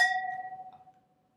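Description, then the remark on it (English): A single bright clink of glasses touching in a toast, clear, with a pure ringing tone that fades out over about a second. No one speaks. “Cheers to leaving.”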